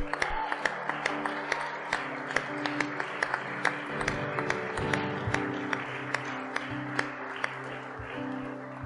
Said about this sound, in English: So let's give them one more little round of applause.